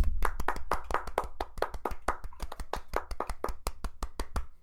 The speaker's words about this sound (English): Let's have a round of applause for our boy.